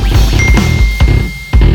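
A new iPhone's notification chime, a thin, bright sustained tone ringing through a run of soft, evenly spaced clinking taps, with no one talking.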